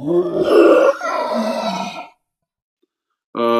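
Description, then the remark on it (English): A deep, rough bear-like growling roar, loud and rumbling in two back-to-back surges lasting about two seconds, followed by silence before a short tonal sound starts at the very end. “I'm no expert on wildlife, but if I were to guess, that sounded an awful lot like a bear.”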